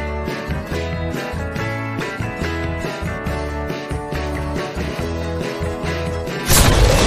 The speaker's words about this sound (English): Explosions.